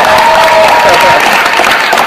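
Loud, dense audience applause: many hands clapping in a steady, even wash for about two seconds, with a faint high cheer or whistle briefly riding over it at the start.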